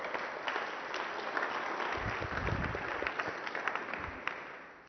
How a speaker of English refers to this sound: So why don't we give her a round of applause?